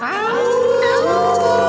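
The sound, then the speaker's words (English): Several people on Rob Bird's Moondog Show howl like wolves at once on the count of three, howling at the Moondog, their overlapping voices sliding up and down in pitch in a loud, continuous chorus that lasts the whole moment. “All right, all right, y'all, well, happy October to the 8th, and we all gonna howl at the Moondog on the count of three.”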